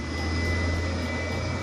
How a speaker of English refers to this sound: God damn, the fucking bus rolled up on me with this loud fucking noise.